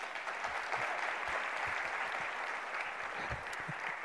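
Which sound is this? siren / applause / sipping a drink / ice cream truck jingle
applause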